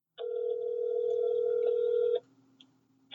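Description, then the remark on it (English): A single steady ringback tone drones for about two seconds on an outgoing phone call to a Dave and Buster's, then cuts to a faint low hum of line noise. No voices are heard. “Yeah, actually, I did call a Dave and Buster's to get some info on what a power card is.”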